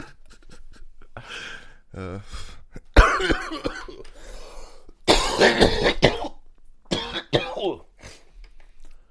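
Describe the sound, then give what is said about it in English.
A loud run of throat clearing and harsh coughs, several rough bursts spread over a few seconds with short pauses between them. “Yeah, like at least 20% of our podcasts are coughing and burping.”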